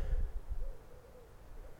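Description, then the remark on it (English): Faint, hooting calls of various birds in woodland, a few soft wavering notes repeating over a low outdoor rumble of wind, with no one speaking. “And we're listening to various birds up there.”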